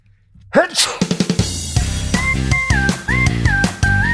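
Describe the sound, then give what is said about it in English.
A single sharp sneeze bursts out loudly, followed by a run of quick percussive taps and then upbeat music with steady, bright sustained tones. “Sorry, I have to sneeze.”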